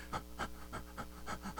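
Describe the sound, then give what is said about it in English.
A voice imitates the breathing of a lion sleeping in the wild on safari, with quick, rhythmic, breathy pants, about six huffs in under two seconds, moderately loud with no talking. “Just the breathing alone took my breath away.”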